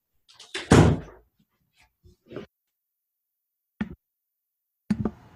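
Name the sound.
door being closed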